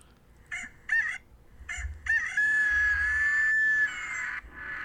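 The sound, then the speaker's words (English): A rooster crow sound effect played from a soundboard: a couple of short choppy notes, then a long sustained high-pitched cock-a-doodle-doo call that holds steady before fading, with no talking. “I roostered again.”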